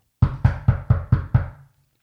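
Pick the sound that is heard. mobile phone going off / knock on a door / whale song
knock on a door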